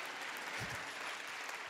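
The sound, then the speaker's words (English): A steady wash of delayed audience applause, many hands clapping at once in a dense, even crackle that holds at a constant level throughout, with no voices standing out. “Yeah, delayed clapping.”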